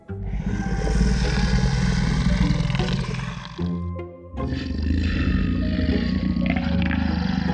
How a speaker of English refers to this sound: Before either of us could fall asleep, we both heard the fierce growl.